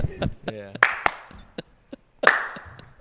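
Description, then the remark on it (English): A handful of sharp, separate claps spaced out unevenly at a slow pace, fairly loud, with a brief voice sounding in between them. “But no, slow guys. Clap.”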